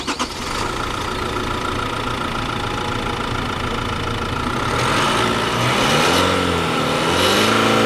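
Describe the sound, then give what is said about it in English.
A car engine runs steadily, heard from over the engine bay, a dense mechanical drone with ticking texture, briefly rising in pitch near the end as if revved slightly; no one speaks. “So that's standing over the hood, right? Over the engine bay.”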